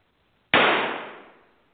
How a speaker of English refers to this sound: Oh, my gosh, somebody's got a gun. Everybody, get down, get down. That gunshot barely missed Max, but it knocked Marjorie's gibberish-filled Fires of Desire manuscript right out of his shaky hand.